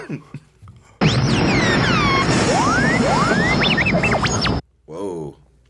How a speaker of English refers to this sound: That's some distress stuff, I think. Mm-hmm. Yeah. I would agree, especially inferring from the explosion noise in the background. Yeah. Oh, yeah. A little giveaway. I guess so. No, that was fireworks. Oh, so he's having a good time. It's July 4th.